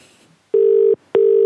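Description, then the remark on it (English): Ringback tone of an outgoing phone call to a paint shop in Glasgow: a steady electronic tone sounds for about half a second, stops briefly, then starts again, loud and clear with no talking. “we're phoning a paint shop for you.”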